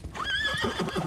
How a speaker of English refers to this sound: It's the Dullahan. The Dullahan, or the Headless Horseman. He gallops on his terrifying black horse, his head tucked under his arm.